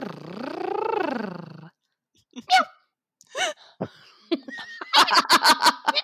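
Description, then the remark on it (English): A voice imitates a cat's purr with a long rolling rumble that rises and falls in pitch, followed by scattered short breathy bursts and a quick run of clipped, repeated noises. “Yellow heart, purr. Purr.”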